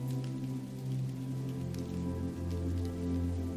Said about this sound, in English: The skies open up and the rain falls harder, with the inevitability of becoming soaked. The members of the laundry club surrender to the storm and embrace it.